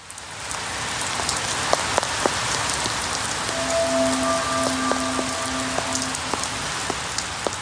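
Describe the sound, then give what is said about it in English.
Steady rain patters onto fallen leaves, a dense hiss of drops with occasional sharper taps; a faint sustained tone hums briefly through the middle. “Raindrops on fallen leaves.”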